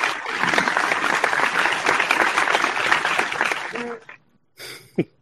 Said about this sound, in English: Not quite the same level of applause, but it's still there. There we go. Boy, that's the Google effects version.